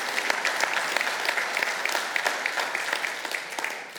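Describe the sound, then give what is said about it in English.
A large crowd claps steadily, dense overlapping applause with a few faint cheers mixed in, sustained and fairly loud throughout without any talking. “I don't know if you can't cheer and clap for that.”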